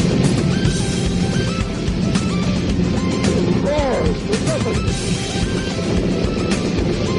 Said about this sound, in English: Look at the rocket go into the clouds at 3,000 feet.